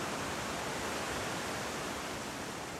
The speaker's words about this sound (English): You are alone on a beautiful beach. Enjoying yourself and breathing to the sounds of the ocean.